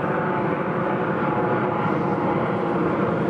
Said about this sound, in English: With a helicopter.